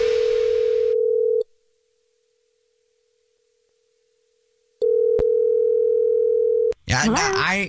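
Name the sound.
telephone dial tone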